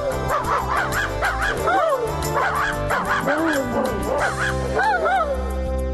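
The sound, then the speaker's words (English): Several dogs bark in quick, overlapping bursts, a loud and busy chorus of yaps that rises and falls over a steady background, with no one talking. “All the dragons barked.”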